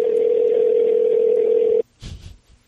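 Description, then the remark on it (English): A single loud, steady telephone ringing tone from calling a man's phone holds for almost two seconds, then cuts off abruptly, followed by a short muffled rustle or voice fragment. “I feel like calling him. Oh, harassing him? Yeah. Until he answers.”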